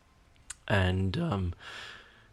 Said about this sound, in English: So I keep yawning. My God. I'm sorry, guys.